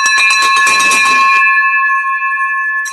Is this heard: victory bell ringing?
yes